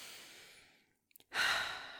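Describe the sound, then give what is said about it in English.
A slow, airy breath fades out, then after a short pause and a few small mouth clicks a loud, deep breath is drawn in. No one speaks. “I love when you people come in with your deep breaths and high hopes. Come on, take a breath with me.”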